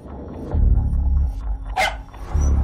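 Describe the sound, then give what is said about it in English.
A single sharp dog bark cuts in briefly over a steady, heavy low rumble, like an idling engine nearby. No one speaks. “That dog was a final gift from my dying wife.”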